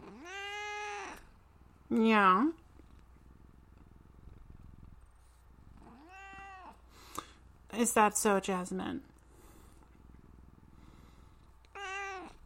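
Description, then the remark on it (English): A cat meows repeatedly, five or so drawn-out calls spaced a few seconds apart, over a steady low purr, while a person briefly speaks between the meows. “we would have some words from Jasmine, our kitty co-host”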